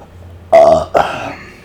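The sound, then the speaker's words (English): A loud burp from a person who had eaten Spam, in two quick bursts, a brief croaking gulp followed by a longer rumbling belch, with no talking around it. “sorry, guys. I had to burp out some spam.”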